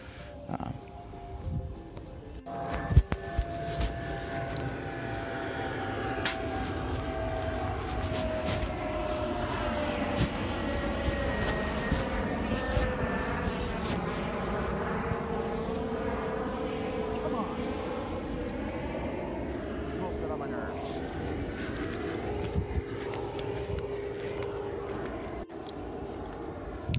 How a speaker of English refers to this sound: The planes are kind of not stopping.